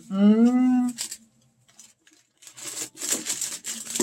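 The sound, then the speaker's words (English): A short hummed vocal note, a pause, then crinkly bursts of scissors snipping and slicing through a vacuum-sealed plastic package over about a second and a half. “In a vacuum sealed package. Not really, but... oh, scissors.”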